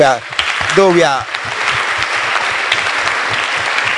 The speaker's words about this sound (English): Though we are mourning, we are still clapping.